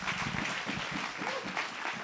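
Sustained audience applause for Jesus as a speaker is welcomed to the stage, a dense, steady wash of many hands clapping at an even loudness throughout, with faint voices mixed into the noise.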